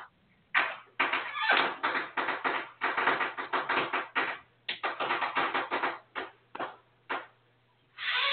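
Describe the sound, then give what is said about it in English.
Neighbors' fireworks for an early New Year's crackle and pop in quick, irregular bursts, heard through an open bathroom and bedroom window, dozens of sharp bangs tumbling over one another for several seconds, then thinning out into a few scattered reports. “My neighbors were shooting off fireworks for an early New Year's.”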